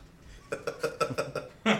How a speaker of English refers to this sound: You can drink like a billion of them. Yeah. You can just, that's like, it does make you burp.